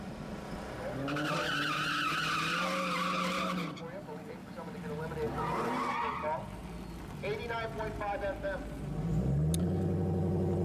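A Dodge Hellcat doing a burnout: loud, sustained tire squeal in wavering, high-pitched bursts over a roaring engine, with a final deeper revving surge near the end, all prominent.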